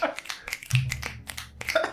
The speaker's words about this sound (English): We do finger snaps here. Oh, this has sorry, been done sorry. Before. I've done it even ASMR style.